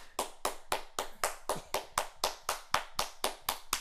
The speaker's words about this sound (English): Okay, you can stop clapping. Sorry.